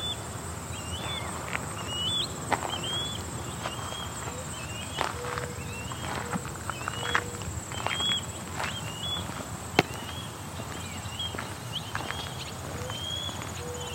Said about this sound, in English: You can hear an osprey calling in the background.